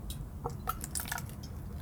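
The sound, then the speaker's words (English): Captain Morgan rum being poured into a cup: a short, quiet trickle with splashy, bubbly drips and little gurgling plinks, heard on its own with no talking. “So if you listen carefully, I'm going to pour some Captain.”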